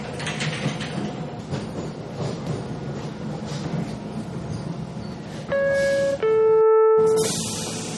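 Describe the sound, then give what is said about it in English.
A steady rumble of a County Metro Rail subway train fills the scene, then a two-part door-closing chime sounds loudly, followed by a sharp burst of hissing air as the doors shut. “Doors are closing. Please stand clear of the doors.”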